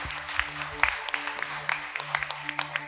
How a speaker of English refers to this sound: Can we clap our hands for those that made that decision for the first time today?